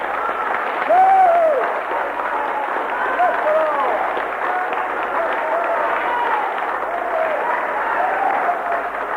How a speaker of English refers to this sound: Shall we all give Jesus of Nazareth a hearty clap? Come on.